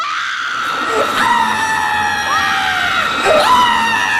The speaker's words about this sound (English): And now for comedically over-the-top scream in 3, 2, 1.